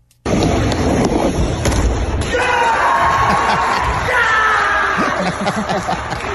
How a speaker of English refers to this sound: The video is great because of how pumped he is after he does it. Here's a clip of his successful attempt and him celebrating by yelling, yeah.